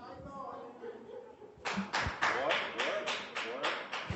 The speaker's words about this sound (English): That's one hand clap.